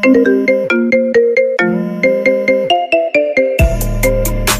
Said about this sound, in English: Because we're just talking about constellating these things and relationships and people, and the phone goes, it's wonderful, it's wonderful.